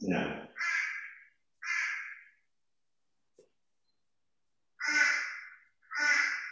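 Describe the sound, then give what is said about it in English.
A bird calls loudly and close by with harsh, raspy caws: three in quick succession, a pause of about two seconds, then two more. “I agree with the bird too.”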